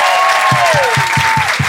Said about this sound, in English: So can you give them a huge round of applause? They're absolutely brilliant.